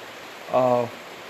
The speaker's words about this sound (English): I just want to let you know that it's raining out, and raining's bouncing off my tin roof, so that's what you're hearing in the background. So I kind of think this makes this episode a little more authentic.